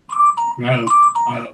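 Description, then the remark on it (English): A telephone rings with bright electronic warbling tones in two short bursts, and a person talks briefly between and over the rings. “I hope you can edit out the phone calls.”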